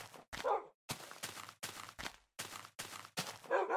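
A run of about eight sharp dog barks comes in quick, steady succession, loud, with brief silent gaps between each one and no talking over them.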